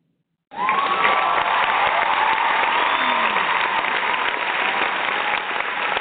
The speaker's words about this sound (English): Let's get the applause going.